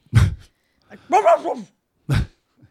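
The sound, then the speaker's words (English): A person mimics a dog, letting out three loud barks: a short gruff woof, a longer whining, yelping bark, then another quick woof, with brief pauses between. “Have you ever wanted to just bark at him?”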